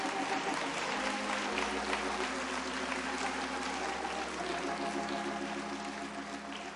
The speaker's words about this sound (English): Now I'm going to have these four beautiful ladies, come down on the floor so you can come up and shake their hand. Let's get a Lord a hand clap for them.